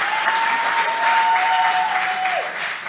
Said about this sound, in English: Praise the Lord. I'm glad you're clapping because some of us can take pictures, but they will not look as good.